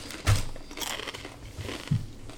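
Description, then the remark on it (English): Crisp crunching of someone biting into sea salt cassava chips from Thrive Market, a few sharp bites spaced out over a couple of seconds with chewing in between, no talking. “They're very crunchy.”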